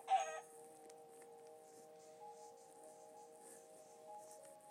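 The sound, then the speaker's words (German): A single short, clipped chicken cluck from a video game right at the start, followed by steady, quiet tonal background music droning on with no voices. “Ah, noch ein Huhn. Hä, wie viele Hühner sind hier eigentlich?”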